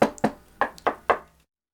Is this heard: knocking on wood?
yes